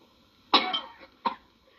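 human body sound, coughing

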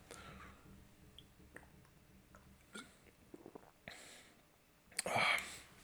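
food or drink, sipping and swallowing beer

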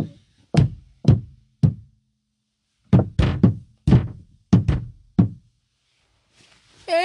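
sound effect, knocking

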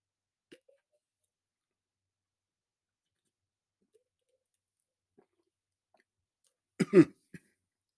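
human body sound, drinking water

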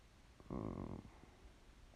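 human body sound, yawning

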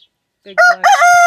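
animal, rooster crowing

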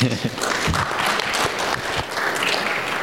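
crowd, round of applause

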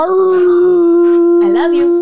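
animal, dog howling

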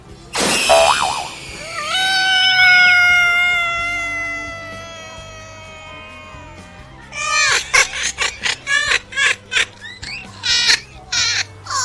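animal, cat

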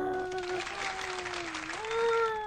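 crowd, applause

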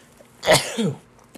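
human body sound, sneeze

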